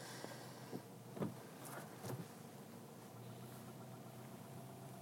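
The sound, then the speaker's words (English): Faint traffic rumble with a steady engine drone, broken by a couple of brief muffled thumps and clatters early on as someone is hit by a car in a traffic accident. No one speaks. “Someone just got completely hit by a car.”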